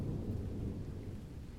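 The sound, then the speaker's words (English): Steady rain pours down on silent streets around midnight during a thunderstorm, in a continuous, dense wash with a deep rumbling undertone, fairly loud and unbroken throughout, with no voices present. “Earlier than usual, the streets grew silent, and by 12 o'clock, nothing but the comfortless pattering of the rain was to be heard.”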